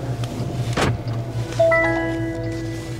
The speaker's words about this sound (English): Doors are closing.